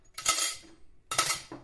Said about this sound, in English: Without further thought, I head back in to finish my dishes so I can finally close shop for the night. I push through the double doors and grab one of the plates out of the murky water and start scrubbing.